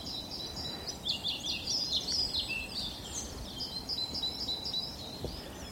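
A pied flycatcher sings a run of quick, high, sweet phrases on a mountainside, repeated almost continuously over a steady low outdoor rush like wind or running water.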